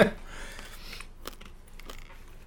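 Crisp crunching of candy with a hard candy coating, similar to an M&M, being chewed: a quick series of sharp cracks and grinding bursts, with a brief voice-like sound at the start.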